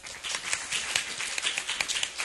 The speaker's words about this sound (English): We have another applause